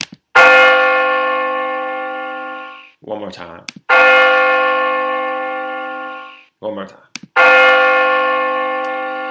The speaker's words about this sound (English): So those three bells are the signification of a death. We have a death in Power, man.